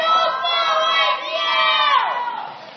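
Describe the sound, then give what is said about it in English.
A church audience at a Sunday service shouts and cheers together as the children are dismissed to their classes, a sustained, loud burst rising in pitch then sliding down near the end, with no clear speech. “Speaking of shouting at God, I guess that was appropriate right there.”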